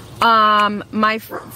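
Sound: dog barking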